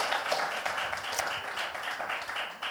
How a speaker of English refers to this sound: Let's give her a cheer as she comes up, because that's your mic.